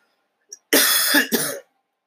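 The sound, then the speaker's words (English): A small throat click, then two harsh coughs in quick succession with a brief gap between them, from a person who had just eaten a spicy chili pizza, followed by silence. No talking. “No, you're not supposed to cough when you're doing a show, but I don't have the coronavirus.”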